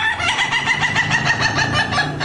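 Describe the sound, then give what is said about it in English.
An Indonesian Laughing Chicken, a long-crowing breed, gives a long crow made of rapid, evenly spaced pulses that sound like cackling laughter, loud, running unbroken for a couple of seconds with no voices. “The Indonesian Laughing Chicken, a breed of long-crowing chickens known for its clarity of its crow.”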